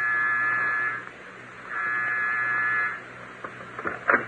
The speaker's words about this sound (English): Push the door bell, will you, Inspector?